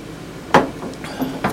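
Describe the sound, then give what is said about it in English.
Shot glasses of whiskey clink together in a toast: a sharp knock followed by a couple of lighter taps about a second apart, with no talking. “But we always start off with a shot. So this is our Tinky Tank. So cheers.”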